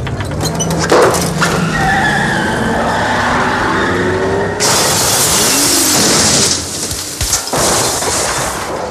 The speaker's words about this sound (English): He then starts kicking his dad's car and runs the car off its block into reverse and out the window, crashing the car into the woods behind his house.